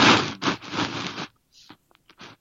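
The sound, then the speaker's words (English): A loud burst of paper shuffling and rustling lasts about a second, followed by a few quieter, scattered crinkles and scrapes. No one speaks. “Oh, there's just like a big sound of like paper shuffling.”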